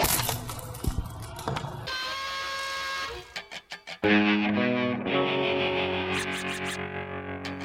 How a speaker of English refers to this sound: The Slap Nuts intro, which is literally the sound of someone cracking walnuts.